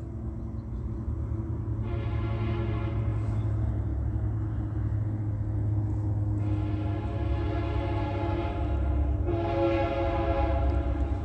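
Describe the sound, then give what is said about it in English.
A United Pacific train passing through a Metrolink train station rumbles steadily while its horn sounds three long, loud blasts, the last two coming close together; no one speaks. “Take a good look at the, oh no, that's Indian Pacific on the Metrolink train station, not Metrolink.”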